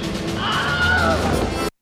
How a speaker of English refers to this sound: And that was a very apparent Wilhelm scream in this movie. Definitely. Yeah. I mean, it is front and center in that moment. Yeah, it's big.